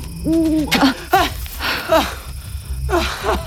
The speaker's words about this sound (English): It was just an owl.